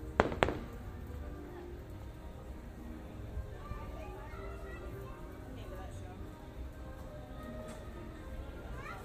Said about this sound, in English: Oh, fireworks.